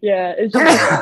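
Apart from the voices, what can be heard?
sneeze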